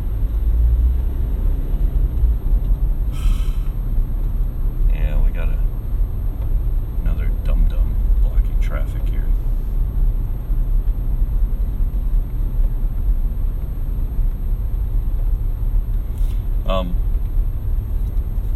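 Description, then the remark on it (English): A truck rumbles past, a loud, steady low roar filling the whole stretch, with a few brief rattles and clatters; muffled voices sit faintly underneath. “Oh, come on, Cope truck. It's ridiculous.”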